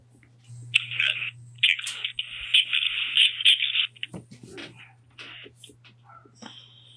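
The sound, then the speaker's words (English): A dog whimpers in high, thin whines, two long drawn-out stretches followed by shorter broken cries, over a faint steady low hum with no one talking; the dog is about to be let outside. “I'm going to let my dog outside.”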